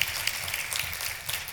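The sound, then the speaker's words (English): An audience at a conference applauds, a dense, steady patter of many hands clapping together at a moderate, fairly soft level throughout, with no voices over it. “So round of applause for all of you.”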